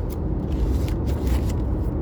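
A vehicle engine rumbles steadily for about two seconds, a low, fairly loud drone with faint scraping and hissing on top and no voices.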